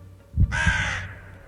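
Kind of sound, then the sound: bird, crow cawing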